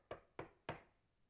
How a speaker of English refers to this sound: Before you can think much further about it, there comes a knock on your door.